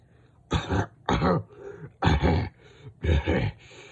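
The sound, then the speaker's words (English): A man coughs up black blood, coughing four times in a rough, throaty rhythm, each burst loud with short pauses between, sounding like harsh throat-clearing coughs with no talking. “Coughing up black blood, he chuckles and stands up.”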